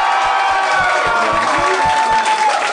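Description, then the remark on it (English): A crowd cheers and claps loudly and steadily, with dense applause and scattered shouts and whoops blending into a continuous roar that holds for a few seconds. The audience is applauding to show they refuse to accept pineapple on pizza. “Applaud if you refuse to let pizza be violated.”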